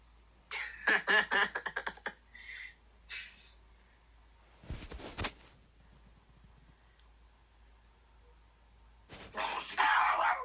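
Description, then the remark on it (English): A pet dog barks in a quick, excited burst of sharp yaps, then a few more scattered barks, with loud noisy bursts breaking in later. “Not everyone on the stream wants to hear you barking. My dog's going crazy over here, man.”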